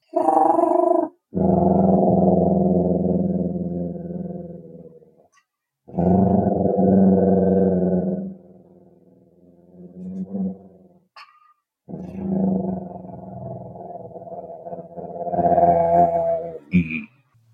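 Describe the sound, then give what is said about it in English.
A voice imitates a tyrannosaur's deep cooing call: three long, low, throaty coos, each lasting a couple of seconds with short pauses between, steady and fairly loud, with a small higher squeak near the end. “I think I like the sound of a cooing.”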